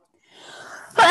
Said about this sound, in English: sneezing. Sorry. Bless you. Bless me. Sorry. Excuse me.